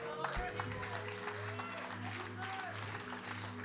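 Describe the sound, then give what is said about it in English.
An audience gives Jesus a hand clap in a steady, dense burst of hand claps, with a low sustained organ-like tone humming underneath throughout. “Give Jesus a hand clap.”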